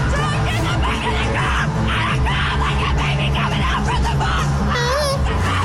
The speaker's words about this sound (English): Yeah, if you hear screaming at the theater this weekend, mm-hmm. it's not the Exorcist movie,